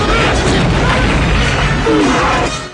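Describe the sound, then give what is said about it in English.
Loud, dense battle noise of explosions and gunfire erupting around a prison camp as Rambo takes out guards, a continuous roar of blasts and crashes with no quiet gaps. “Rambo takes out more guards as explosions erupt around the camp.”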